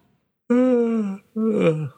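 A voiced yawn: two drawn-out, groaning vocal sounds, the first long and steady, the second sliding downward at the end, loud against an otherwise silent background.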